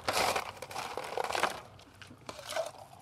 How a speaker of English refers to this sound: So we're going to add some ice to this.